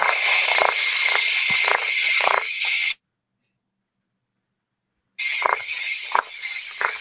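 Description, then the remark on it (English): A small generator engine runs with its choke pulled, a steady raspy buzzing hum with sporadic sharp ticks. The sound drops out completely for about two seconds, then returns unchanged. “You guys hear that or no? The purring? It's purring like a cat.”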